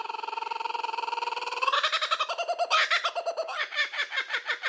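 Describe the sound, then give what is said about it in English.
A cartoonish bird sound effect: a steady trilling chirp that breaks into a rapid, bouncy series of warbling squawks, loud, with no voices. “So slap the bird, guys, and let's do it.”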